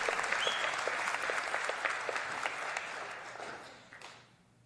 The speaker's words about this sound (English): He's the Son of God, the Savior of the world. He's Jesus. He is alive. That's a good spot to clap right there.